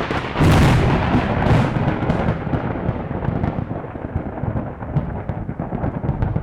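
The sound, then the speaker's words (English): A tremendous crash of thunder bursts out loud, then rolls on as a deep rumble echoing all around a valley, slowly fading over several seconds. No voices are heard. “there came a tremendous crash of thunder that echoed all around the valley and shook the very foundations of the tower.”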